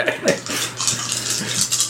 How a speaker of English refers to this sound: Give him, you roll 2 extra dice for his strong. So with your strong and then add 2 just awesome dice.